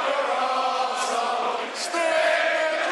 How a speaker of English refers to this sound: And away we go to the resounding shouts of "you fucking prick" at the referee for a full start a few minutes ago.